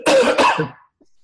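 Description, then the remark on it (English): Two quick, harsh coughs in close succession, loud, trailing off into a raspy exhale before falling silent. “thanks for coughing right over me.”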